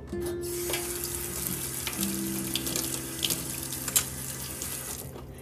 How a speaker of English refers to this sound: Oh, I forgot to rinse out my spoon.